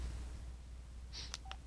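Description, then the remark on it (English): A couple of short electronic beeps as the right soft key of a mobile phone is pressed, brief high-pitched tones with a click between them, heard over a steady low hum with no talking. “I'll hit the right soft key.”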